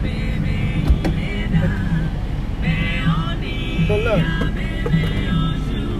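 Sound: old truck engine running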